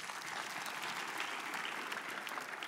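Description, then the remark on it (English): An audience applauds for Jesus during a sermon in a dense, steady wash of clapping that holds at an even, fairly loud level throughout, with no speech audible over it. “So clap for him again.”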